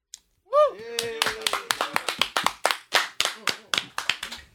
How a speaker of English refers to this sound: So everybody join me in giving a round of applause to the first band.